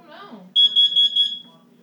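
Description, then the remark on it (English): A smoke detector alarm sounds a rapid string of loud, high-pitched beeps for about a second, following a brief voice and over a low steady hum. “What's the smoke detector going off?”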